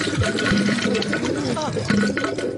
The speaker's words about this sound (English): So I'm going to demonstrate my duty in the tub. So I'll put it in the tub right now. I'll run the water here. Here comes the duty.